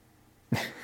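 After a moment of near silence, Frankie, a pet dog feeling a little sick and pacing because he can't get comfortable, lets out one short, harsh cough-like hack, fairly loud, with a brief breathy tail trailing off.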